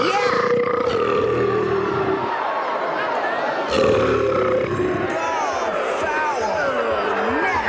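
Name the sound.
belching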